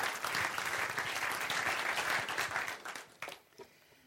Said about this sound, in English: Let's give him a round of applause, shall we?